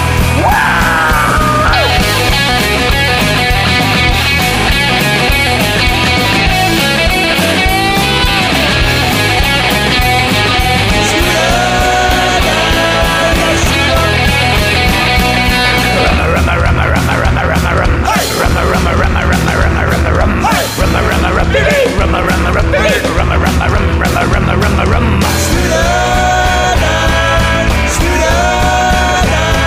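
A loud, driving psychobilly song plays throughout, with a dense full-band sound, a pounding steady beat, twangy guitar and shouted, yelping vocals. The arrangement shifts partway through but stays energetic to the end.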